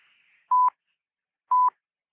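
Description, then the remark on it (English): Two short, steady electronic beeps from the Industrial Research Limited Talking Clock time signal over a phone line, marking 7 hours 55 minutes, each a loud mid-pitched pure tone lasting about a fifth of a second, spaced one second apart, with silence between. “On preferred tone, the time will be 7 hours, 55 minutes, 0 seconds.”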